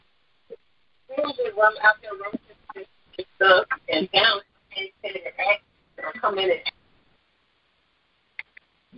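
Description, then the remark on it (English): Muffled, tinny background chatter and rustling come through someone's unmuted phone line during a church service call in irregular bursts for several seconds, followed by a few faint clicks near the end. “Yeah, someone with their phone unmuted.”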